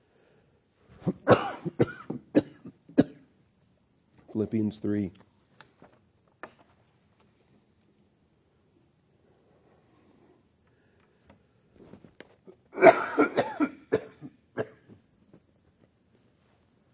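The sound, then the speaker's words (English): A man coughs a few times in short, harsh bursts between brief bits of speech while preaching from Philippians 3, with quiet pauses in between. “Philippians 3, if my cough allows me to survive the hour.”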